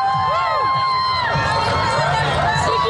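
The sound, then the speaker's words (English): A large crowd cheers and shouts at the annual Pride Fest LGBTQ parade in Albuquerque, with many overlapping voices, whistles and whoops rising and falling in a loud, continuous roar. “Huge crowds came out to celebrate Pride Fest with the annual parade.”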